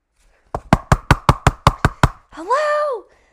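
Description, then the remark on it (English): Nine rapid, loud knocks pound on an unlocked kitchen door in a steady, urgent rhythm, followed by a short voiced call from a person. “But literally, as the water starts boiling, someone starts pounding on my door.”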